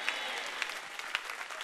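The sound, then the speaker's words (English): A church audience claps their hands together in a dense, steady wash of applause after the pastor asks them to clap and say amen, with a few sharper claps standing out at a loose regular pulse. “If you believe that, clap your hands and say a strong amen.”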